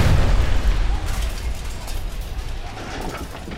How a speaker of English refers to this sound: What was that? Wow. Wow, that was loud. What's going on? Where are Mama and Dad? I don't know. I think something exploded.